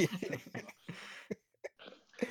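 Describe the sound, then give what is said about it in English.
A man coughs in a rapid burst of harsh, throaty hacks, followed by a few sharper, isolated coughs with brief pauses between them, fairly loud. He is coughing on the dry crumbs of a microwaved solo cookie cake from Walmart. “That sawdust one of the, made him cough.”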